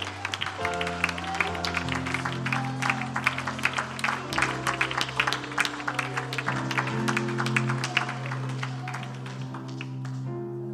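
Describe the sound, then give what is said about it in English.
An audience claps steadily and energetically in praise to the Lord for about ten seconds during an evening worship service, the dense overlapping hand claps ringing over sustained organ-like chords and a low bass tone, with no one speaking. “Lift a voice of praise, a hand clap of praise to the Lord tonight.”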